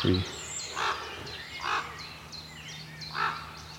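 Three ravens sitting on a branch on a morning give three harsh, croaking calls spaced about a second apart, while thin high bird chirps twitter faintly in the background.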